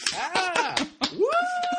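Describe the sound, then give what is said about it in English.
A handful of sharp, irregular hand claps ring out as mock applause for Tesla's self-driving car, beneath a voice making rising and falling whoops, like mock cheering, with a long sustained whoop near the end. “I'll throw in some claps as well.”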